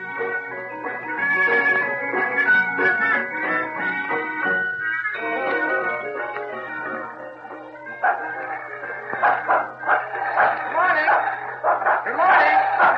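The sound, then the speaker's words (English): A dog hitched to a lawnmower barks and yaps in rapid, repeated bursts, loud, growing busier toward the end over a steady low hum, with what may be voices mixed in. “Did you have to hitch that dog to the lawnmower?”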